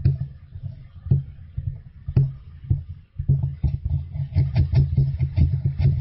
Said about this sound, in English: That's ASMR. That's it. It's just a bunch of noise. But I guess people get, like, weird goosebumps or weird tingling sensations from it.